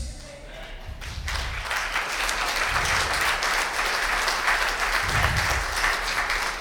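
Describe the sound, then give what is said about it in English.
A church audience breaks into sustained applause, many hands clapping in a dense, steady wash of sound that starts after a brief quieter moment and holds at a fairly loud level throughout, agreeing to the one row challenge. “You're clapping.”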